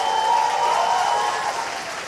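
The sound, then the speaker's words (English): A crowd at a climate conference applauds Lula steadily as he says Brazil is back, the dense clapping forming a loud, continuous wash of sound that holds for about two seconds before easing slightly at the end. “He said to great applause, Brazil is back, back in being a leader in environmental protection.”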